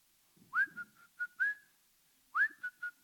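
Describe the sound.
Someone whistles a short tune during a church sermon about joy in working: each phrase opens with a rising, swooping note followed by a few quick, clipped notes, and after a brief pause the phrase repeats.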